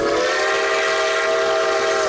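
A train whistle blows one long, unbroken chord, its several steady tones sounding together at an even, fairly loud level for about two seconds, with no talking.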